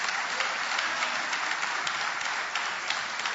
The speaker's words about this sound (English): Did you learn something this morning? Give the Lord a hand clap if you did.